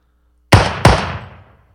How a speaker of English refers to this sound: Is it the wallaby's mating cry? That is it. Well done. Oh my gosh. No, it's staple guns. They use a staple gun.